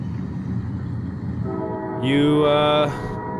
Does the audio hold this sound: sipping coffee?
no